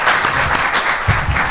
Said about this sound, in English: Thank you guys for being on the panel and everything. And go ahead, if you guys want to give them a round of applause, and thank you for being up here.